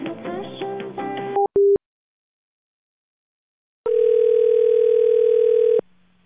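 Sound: telephone tone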